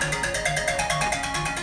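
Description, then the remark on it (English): A phone ringtone from an incoming call plays loud, a rapid, evenly pulsing electronic melody that repeats steadily throughout, with no one talking over it. “Hold on, we got someone trying to interrupt us with a phone call.”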